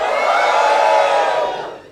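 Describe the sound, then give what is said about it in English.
An audience cheers and whoops loudly together in a sustained burst on a count of three, cheering an announced winner during a live radio broadcast; the roar holds steady before fading away toward the end. “I am, but once the winner has been announced, obviously cheer for all of your favourites, but the winner gets a big whoop whoop.”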